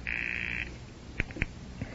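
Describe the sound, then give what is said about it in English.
A call placed from a coin telephone: a steady, buzzing ring tone sounds once for over half a second on the other end, followed by silence and a couple of sharp clicks on the line. “I will try to ring your number.”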